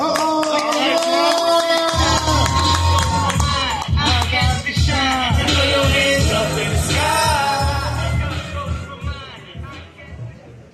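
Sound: audience cheering and clapping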